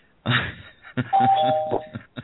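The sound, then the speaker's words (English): A doorbell rings, a clear two-tone chime with a higher note followed by a lower one, sustained for under a second amid some muffled thumps and rustling. “That's him, he's at the door.”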